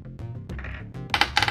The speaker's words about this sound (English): I'm rolling that die. It's only fours. I've gotten nothing but fours that and a one.